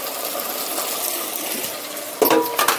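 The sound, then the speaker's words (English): Onions and rinsed rice sizzle steadily in oil in a cooking pot, a continuous crackling hiss, with the exhaust fan turned off, and a few bright metallic clinks of a utensil against the pan near the end as it is stirred. No one speaks. “Turn off that fan so you can hear a little more sizzle. There. Now you hear just the pot, not the exhaust fan.”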